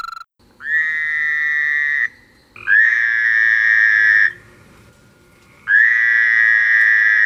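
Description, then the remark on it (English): A Fowler's toad gives three loud, nasal, buzzing calls, each a steady drawn-out bleat lasting a second or two, separated by short pauses, with no voices. “First, I'm going to play the Eastern American toad for you, and then I'll play the Fowler's toad for you.”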